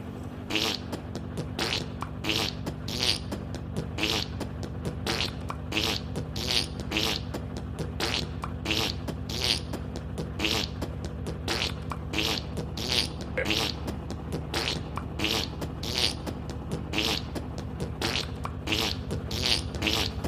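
A long, even series of short, spluttering fart-like bursts repeats at a brisk, regular pace, about every 30 seconds, over a constant low mechanical hum from seven quite large, boxy structures, moderately loud, with no talking.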